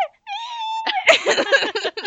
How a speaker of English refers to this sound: No, it's just me screaming. It's just you going, no, no.